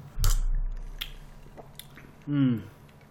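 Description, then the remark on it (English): Wet sipping and mouth sounds from someone taking a drink of Conor McGregor's Proper 12 Irish whiskey with water, followed by a short voiced exhale of breath at the end. “I hear the boy drinking.”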